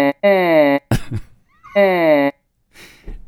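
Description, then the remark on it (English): Two long, buzzy, droning vowel tones from the artificially recreated vocal tract of a 3,000-year-old mummified priest, each held about half a second and separated by a short breathy burst, with faint speech trailing at the end. “it's actually, you know, a 3,000-year-old priest who was mummified. We put together how he sounds. Yeah, it's recreated his vocal cords.”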